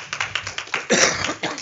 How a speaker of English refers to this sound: And you got to give God another hand clap of praise tonight. Amen.